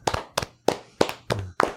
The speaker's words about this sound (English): I mean, you deserve an applause for that, Mr. Mm-hmm. White.